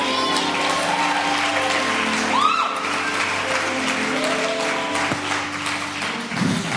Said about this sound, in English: Hey, can y'all give them another round of applause?